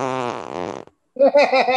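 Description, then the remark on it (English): A loud fart, caused by beans eaten the night before, in two sputtering, buzzy bursts separated by a brief pause, the second one sounding more wobbly and squeaky. “I forgot I got a fart.”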